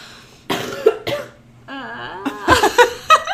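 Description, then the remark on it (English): A harsh, congested, wet phlegmy cough repeats in several loud bursts with a strained, voiced hack in between, with no talking. “Wait, my not singing cough. Sounds worse than the cough.”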